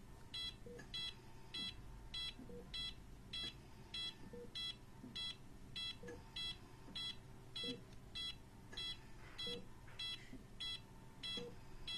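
A heart rate monitor measuring a patient's heart rate beeps steadily, about once per second, in short high electronic tones over a low background hum, with no one talking.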